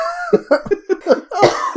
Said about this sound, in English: You were coughing.